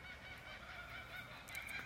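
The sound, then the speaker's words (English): A dense chorus of birds calling outdoors, many harsh overlapping calls sounding continuously, with no one speaking. “Oh my god, listen to these birds.”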